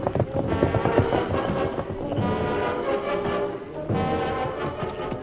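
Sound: horses galloping hoofbeats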